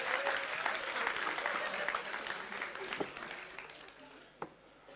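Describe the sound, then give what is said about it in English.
An audience claps in a dense, steady patter that gradually thins out, with a few scattered louder claps near the end as the applause dies down. “Give him a clap.”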